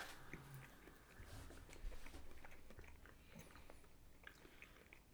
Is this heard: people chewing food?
yes